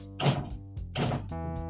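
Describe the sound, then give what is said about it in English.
Two loud, heavy bursts of hammering on a studio door, about a second apart, each a dull thudding cluster, with a steady low tonal hum running underneath. “Hammering on the studio door.”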